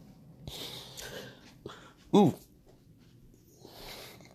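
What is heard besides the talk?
hiccups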